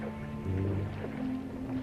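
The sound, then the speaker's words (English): Water laps and sloshes softly against the sides of a rowing boat on a river in the early morning, with a steady low hum running beneath the gentle splashing throughout. “You can hear the sound of the water lapping around the edges of the boat.”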